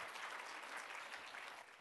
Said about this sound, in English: Can we give them a huge round of applause as we send them down? Thank you guys very much. Thank you.